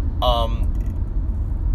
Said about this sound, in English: Because we're about a month in now, and it's pretty clear, this truck next to me, I'm sure you can hear that, is really, really loud.